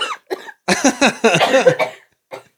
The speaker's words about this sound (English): Twice now this episode, you've made me laugh so hard I cough, and that is rude.